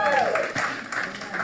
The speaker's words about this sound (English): Ladies clapping on the side like this.